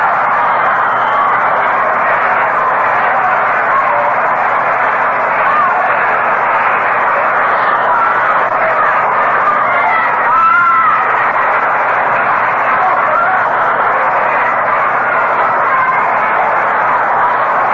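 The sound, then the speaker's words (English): A steady, dense roar of a baseball crowd at a Mets–Cubs game, with scattered shouts and yells rising out of the murmur, one brief louder cheer swelling midway before settling back into the continuous buzz. “The crowd, no play.”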